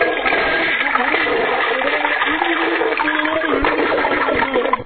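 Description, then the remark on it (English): A toilet flushes with a loud, steady rush of water for about five seconds, continuous, with a gurgling hiss that barely changes before it cuts off. “And then on top of that, right before court, right before he got into court, he tried to flush his head down the toilet.”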